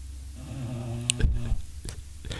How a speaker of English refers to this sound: Now, the problem with a flat-nosed dog is they don't get air in as easily as, like, O'Neill here. That's why you can hear Daisy snoring right now. Let me turn up this mic. You'll hear. That's why you can hear her snoring so loud.